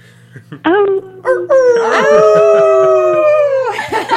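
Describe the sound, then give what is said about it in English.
A person imitates a wolf howl, with several short rising yelps building into one long, sustained, wavering howl, loud, then fading out. “Yeah, do you want to howl with us?”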